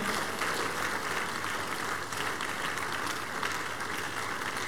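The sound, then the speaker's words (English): Sustained applause from a large church audience giving praise, a dense, even wash of many hands clapping at once, steady and loud throughout without pauses. “Are you tired of clapping?”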